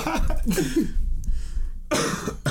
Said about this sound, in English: I'm sorry for coughing.